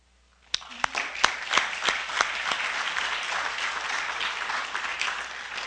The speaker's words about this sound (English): And they deserve an applause for that because they went on, did whatever they had to do.